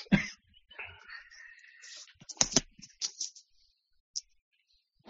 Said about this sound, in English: Excuse me, I had a... It's an allergy season here in Austin, and I can't stop coughing.